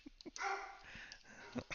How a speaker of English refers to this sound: Even your dogs are excited about that one.